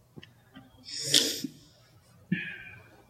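Two wet sniffles through a runny nose, a longer drawn-in sniff followed by a sharper shorter one, with quiet breathing around them.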